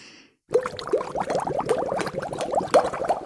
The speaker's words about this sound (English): Before we get started, let's warm up. I want you to pretend you have a straw in your mouth and you are blowing bubbles in a cup of water. Big breath in.